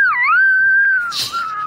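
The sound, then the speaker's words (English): A creature hit by fire screeches in pain: one high, piercing, sustained shrill wail that wavers at the start, holds steady, then breaks into a harsh, raspy burst before trailing off, reverberating off a cliff. No talking. “And you hear this high, terrifying, piercing sound.”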